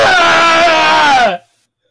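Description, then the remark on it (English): A goat in a front yard lets out one loud, harsh scream lasting over a second, strained and buzzy with a steady pitch that sags at the end before cutting off into silence. “Sean's goat just exploded.”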